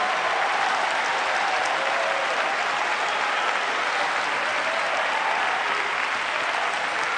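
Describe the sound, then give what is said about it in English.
An audience claps their hands in worship, making a joyful noise unto the Lord: sustained, dense applause, a steady loud wash of many overlapping claps with no single beat standing out, lasting the whole stretch without speech. “Clap your hands and make a joyful noise unto the Lord.”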